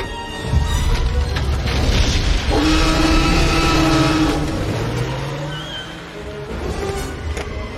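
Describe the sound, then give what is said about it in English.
A car engine roars to life with a loud low rumble, then revs with rising, whining tones as the vehicle accelerates away, the noise easing slightly toward the end. “Hey. Start the engine.”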